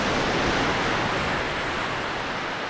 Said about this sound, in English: Yeah, in the shade of this big Norfolk Island pond. With the sound of the waves behind us, it's pretty good. Yeah, it's a magic spot.